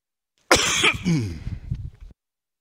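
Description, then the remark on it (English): A loud cough bursts into a microphone during a church sermon, followed by a rough, rasping throat-clearing that trails off after about a second and a half. “Apparently coughing in your microphone causes the battery to die.”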